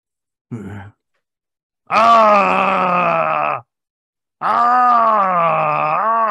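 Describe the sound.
A voice imitates a super mutant's guttural groaning scream: a short grunt, then two long, loud, rasping howls with a pause between them.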